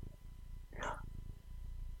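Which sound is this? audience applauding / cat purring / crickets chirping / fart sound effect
cat purring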